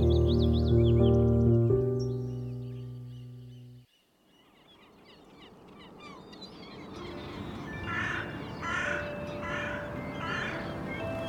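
A short musical phrase fades out, then a crow caws harshly several times in a steady rhythm over a noisy rushing background, fairly loud and close.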